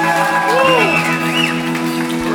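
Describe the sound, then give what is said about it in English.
A church audience applauds and cheers loudly and steadily as a clap offering to the Lord in a morning service, with scattered shouts and whoops rising above the clapping over sustained keyboard chords that hold throughout. “Come on, let's give the Lord a great cloud offering this morning, church.”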